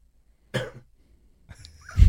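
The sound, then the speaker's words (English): A single sharp cough bursts out while someone tests a touchscreen cough button, followed by a pause and then a rougher, throaty second cough or throat-clearing sound near the end. “So if you push this button and you cough, Just cough and push it, or push it and cough.”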